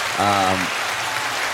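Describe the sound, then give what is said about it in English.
A steady wash of audience applause fills the whole moment, with a single voice briefly calling out over the clapping near the start. “definitely deserves a round of applause, this whole conversation.”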